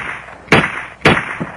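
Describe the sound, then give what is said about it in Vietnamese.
Three sharp gunshots crack out in quick succession on a deserted street on an autumn afternoon, the first two loud, the third noticeably fainter, each leaving a brief echoing tail against a hissy background. “Tiếp theo, ba phát súng rít vang lên trong buổi chiều thu phố vắng.”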